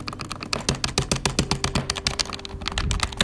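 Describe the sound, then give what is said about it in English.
Rapid, frantic tapping on game controller buttons while trying to pick the operator Lion during the operator pick phase: a dense stream of sharp plastic clicks in a fast, uneven rhythm lasting several seconds, over a low steady hum, with no talking. “Like every time you pick your operator, you just hear yourself absolutely tapping on the controller, getting Lion.”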